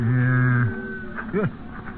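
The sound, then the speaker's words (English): A cow that needs milking lets out a long, low, steady moo, then after a short pause gives a brief rising-and-falling call, with no one speaking. “the cows need milking.”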